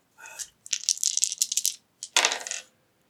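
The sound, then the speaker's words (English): Dice clatter and tumble across a hard tabletop in a lively rattle, a longer run of quick clicks followed by a second shorter burst, with no voices. “Well, if you push it and that one dice comes up a one, you've got two other dice that aren't going to affect it.”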